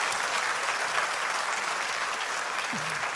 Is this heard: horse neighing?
no